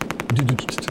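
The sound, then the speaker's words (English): A rapid burst of machine gun fire, from a gun called Dragon, approaching the port at a harbor in Liberia: about ten sharp, evenly spaced shots in under a second, loud and steady, with a brief low droning tone underneath midway through. “What's that sound? That's a machine gun approaching the port.”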